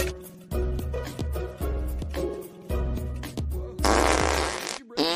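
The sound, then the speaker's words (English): A rapid series of loud, buzzy fart noises, one after another in a steady rhythm, finishing with a longer, sputtering, airy blast. No one speaks. “Hey, stop farting on me.”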